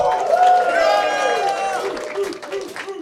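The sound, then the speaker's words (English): A live crowd at the University of Central Florida College of Business cheers loudly, with sustained whoops and shouts rising together over about three seconds, then thinning into scattered yells and a few claps near the end. “Let's hear y'all in the crowd.”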